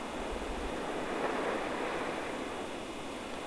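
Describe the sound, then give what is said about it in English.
A steady, dense roar of ocean surf on a rocky shore mixed with gusting wind and sleet, continuous and fairly loud throughout with no distinct breaks, and no voices. “Sleet and waves battered my eyes shut.”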